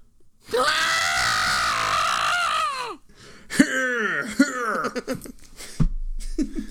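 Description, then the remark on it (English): A voice imitates a villain's wild screams and grunts: one long strained scream lasting a couple of seconds, then a burst of shorter, choppy yells and grunts, loud. “You don't get enough of just those grunts and screams.”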